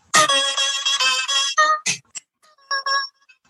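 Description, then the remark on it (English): A bright, buzzy electronic melody, the theme music of a video game, rings out as a phone ringtone, a run of quick, loud, evenly spaced notes followed by a few softer trailing tones. No one speaks over it. “It dawned on me, and I don't know how much I can play this legally, but I remembered that I had on my phone this for my ringtone.”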